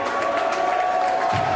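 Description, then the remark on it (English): A large crowd cheers and applauds Kanye West in a steady, dense roar, sustained and fairly loud throughout, with no clear individual voices standing out. “The crowd seems surprised but supportive of Kanye, right?”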